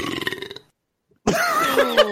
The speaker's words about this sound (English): it never sounds that way. Like mm-hmm. when I do it, it's just a normal burp.